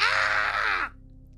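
A single loud, harsh scream lasting under a second, with strained harmonics that slide downward as it cuts off abruptly into quiet, like a stock sound-effect scream.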